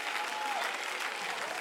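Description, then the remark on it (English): A crowd at a worship service claps steadily, a dense wash of many hands applauding at an even, fairly loud level with no pauses, and a faint whistle-like tone rises briefly partway through. “I wish I had one or two or three former addicts that would clap their hands and would let them know that, hey, God did it for me.”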